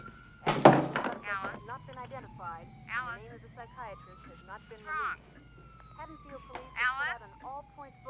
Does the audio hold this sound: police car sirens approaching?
yes